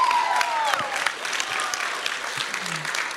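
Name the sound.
audience applause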